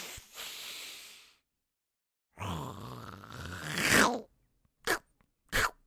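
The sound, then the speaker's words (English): A voice imitates a weird feathered lizard's big sniff, freed from a lock in a tabletop game: a long breathy inhale, then a rough, rising snorting rush that swells loudly, followed by two short sharp sniffs. “This weird feathered lizard walks out and looks at you, Arabin, and does a big sniff, just...”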